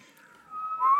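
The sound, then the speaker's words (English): A person whistles a short, thin tone that starts faint and wavering, then swells into a louder, steadier rising note, an attempt at the whistle from West Side Story, with no talking. “Are you trying to do the whistle?”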